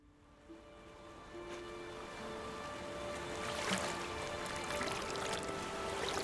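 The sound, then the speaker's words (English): Water laps and sloshes steadily around a boat carrying Alexander Hamilton and Aaron Burr down the Hudson River at dawn on July 11, 1804, headed to Weehawken, New Jersey. The wash is continuous, swells slightly louder as it goes on, and there are no voices. “On July 11, 1804, Alexander Hamilton and Aaron Burr floated down the Hudson River at the crack of dawn, headed to Weehawken, New Jersey.”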